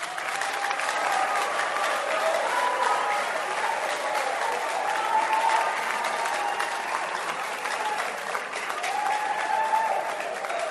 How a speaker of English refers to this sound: I don't know why you are clapping. Why are you clapping?